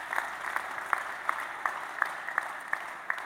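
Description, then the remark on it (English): An audience claps together in a steady, even rhythm, a sharp beat roughly every third of a second over a constant wash of crowd noise, with no talking. “You're clapping this in the house, right?”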